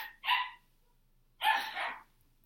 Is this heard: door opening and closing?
no